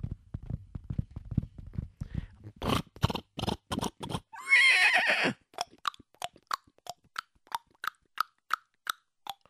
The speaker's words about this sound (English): Let me just get on my horse and let me gallop away as fast as I can.